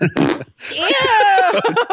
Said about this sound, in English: And that didn't get picked up on my phone, but yes, as I laughed, I did let one loose. But I think only the computer picked up.